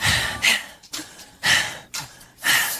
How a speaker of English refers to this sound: Heavy breathing.